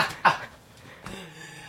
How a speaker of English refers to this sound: as you can hear, I'm still coughing it up